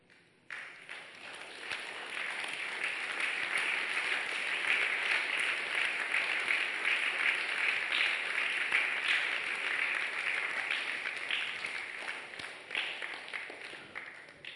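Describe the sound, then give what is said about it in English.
A crowd raises their hands and claps in answer to a call to show commitment before God. Steady clapping for about fourteen seconds, a dense, even wash of many hands that swells quickly at the start and thins slightly near the end. “Those who have the confidence that your case is different and it is before God, you have submitted today, this day, can raise your hands and clap.”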